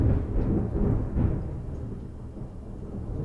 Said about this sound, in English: We're going to hear thunder here soon.